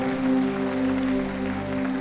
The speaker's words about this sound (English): Give Jesus a hand clap right there. Give Jesus a hand clap. That's so good.